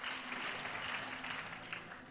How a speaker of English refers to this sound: Woo! Fantastic. Come on, let's give him a clap.